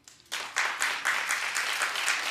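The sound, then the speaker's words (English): An audience breaks into applause, a dense wash of many hands clapping that starts suddenly and holds steady and fairly loud, with faint rhythmic pulses running through it. “Clap if you believe her.”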